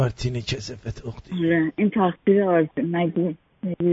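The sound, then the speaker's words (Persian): Persian speech during a phone call over a thin, band-limited line that repeatedly drops out, with the voice breaking off abruptly into short silent gaps before resuming. “نه والا صداتون قطع و وصل میشه یه مقداری، فکر کنم رو نمیدونم اسپیکر هستید رو چیه که صدا قطع و وصل میشه.”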